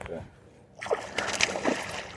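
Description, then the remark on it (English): A hooked fish jumps and thrashes at the surface of a lake, throwing a few sharp splashes in quick succession over a soft outdoor background, after a brief quiet start. “A jump and a spit.”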